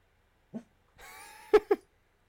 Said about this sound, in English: Hey, yo, stop that. Stop that. Stop that. Cut it out, dog. What? My dog be doing that sometimes, too. He's just, is he, like, doing the... You're going to bark at the door now.